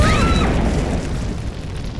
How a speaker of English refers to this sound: It would seem that an explosion has just ruptured the studio wall behind us, bathing the set in flames.